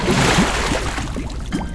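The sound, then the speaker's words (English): A submarine, the steam machine with National Children's Museum written across its side, breaks the surface by a beach, with a loud, steady rush of churning, sloshing water that eases slightly toward the end. No voices are heard. “Is that a submarine coming from out of the water?”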